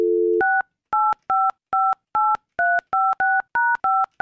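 A brief dial tone gives way to about ten quick touch-tone keypad beeps, evenly paced, as a phone number is dialed to call someone at work. No voices.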